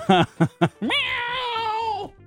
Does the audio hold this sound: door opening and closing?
no